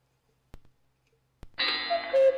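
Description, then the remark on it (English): Two sharp mechanical clicks, then a cuckoo call sound effect rings out, a bright, reedy whistle-like tone that swells louder toward the end. No one speaks. “You heard cuckoo and you thought somebody was just going to yell out cuckoo?”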